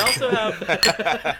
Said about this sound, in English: We also have a fifth glass clinking in the backyard today. I'm happy to report.